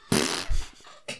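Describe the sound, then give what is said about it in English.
A short, buzzy raspberry blown with the lips, imitating a fart, with a low flappy burst in the middle and a brief breathy trail at the end. “Oh, no, I made a fart noise.”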